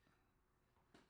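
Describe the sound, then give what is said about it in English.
A single sharp, explosive sneeze bursts out loud after a brief quick intake of breath, following near-silence. “Ooh, I got a sneeze.”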